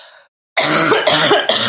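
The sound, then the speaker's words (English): A loud cough erupts after a brief silence, breaking into three harsh, rasping bursts in quick succession, with no talking around it. “All right, wait, pause. Hold for cough.”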